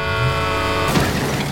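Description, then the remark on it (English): A loud, steady car horn blares for nearly a second, then cuts into a harsh crashing burst of noise as a vehicle collides, with no voices. “Doesn't look like they got caught in the crash.”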